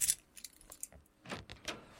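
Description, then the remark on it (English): Keys jangle in a few quick, bright metallic bursts as they are handed from one hand to another, with short pauses between the clinks. “Have you got the keys? Keys, yeah, here you go.”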